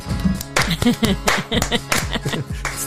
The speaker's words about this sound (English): Where's our clapping sound effect?